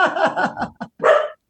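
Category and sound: animal, dog barking at doorbell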